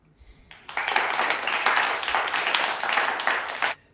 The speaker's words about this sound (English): Yeah, you got some clap going. Hey, I appreciate that, even though that was fake claps.